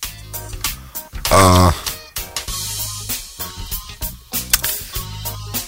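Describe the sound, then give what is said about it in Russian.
Busy rustling of many paper documents being shuffled through in a search, with repeated crisp bursts and brief pauses, plus a short murmured voice partway through. “Тут очень много у меня разных всяческих документов, бумаг.”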